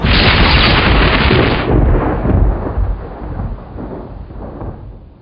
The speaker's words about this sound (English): Lightning and thunder, strike the wabbit. Cue thunder roll sounds.